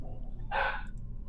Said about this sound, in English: Whose dog is that? Mine.